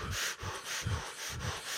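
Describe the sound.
Rapid, forceful Wim Hof-style breaths in a steady rhythm, about four quick in-out cycles, loud, with no talking, a deliberate power-breathing exercise.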